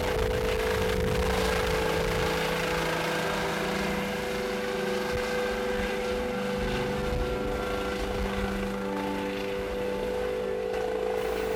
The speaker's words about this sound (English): As it turns out, helicopters can be noisier than I thought. Also, the wind from them can be very strong.